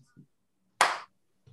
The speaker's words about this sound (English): You get the slow clap